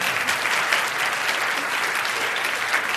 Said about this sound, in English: We thank you, and you can applaud that.